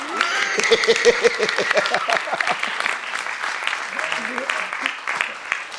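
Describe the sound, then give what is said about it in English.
A church crowd breaks into steady, fairly loud applause for Jesus, many hands clapping together in a dense patter that carries on throughout, with a few voices rising faintly underneath. “So you won't clap for Jesus.”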